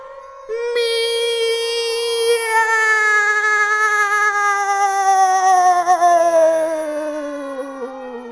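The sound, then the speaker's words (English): Several cats yowl and screech together in one long, unbroken, loud wail at a football match, their shrill, overlapping tones slowly sliding downward in pitch over about eight seconds. “The cats went crazy, and their chorus was the vilest sound that ever reached my ears. Just one long, screeching...”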